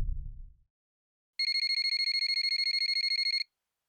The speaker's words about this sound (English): I wake up again to my phone ringing, and once again I let it go to voicemail.